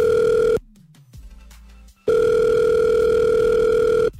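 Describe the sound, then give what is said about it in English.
A phone line ringing out as a call is placed to a man: two long, steady electronic ring tones separated by a pause of quiet line hiss, loud as if heard through the handset. “So what we're going to do is we're going to have you listening silently on the phone next when we call him.”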